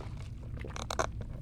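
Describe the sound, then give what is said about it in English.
A quick sip of Mountain Dew Baja Blast from a huge Taco Bell cup, heard as a few short, hissy slurping bursts over a low steady rumble, with no talking. “I've got the huge Mountain Dew Baja Blast next to me, this big cup. Can you hear it? Take a little sip off of that.”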